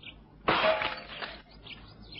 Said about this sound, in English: I think it better to break in through these windows. Stand aside. Leave this to me.